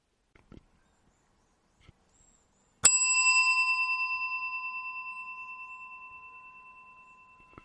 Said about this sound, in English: Yeah, that's the big bell. That's the big bell.